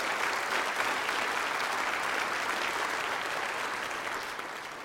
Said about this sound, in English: Clap your hands to the glory of God. That's good stuff.